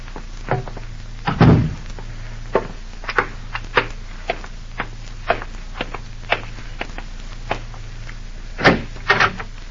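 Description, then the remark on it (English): A door swings shut with a solid thud, surrounded by scattered light knocks and clicks, with a couple more firm bumps near the end over a low steady hum. “Close that door”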